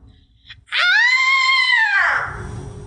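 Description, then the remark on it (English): A woman's loud, high-pitched anguished scream, one sustained open-mouthed cry lasting over a second that rises and then falls in pitch before trailing off into low background noise. “This is where we listen to different anguished cries and guess what the person screaming is having a meltdown about.”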